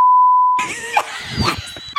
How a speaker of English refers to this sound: oh, I shouldn't have said that. I'm sorry. Beep that out. It's an expletive.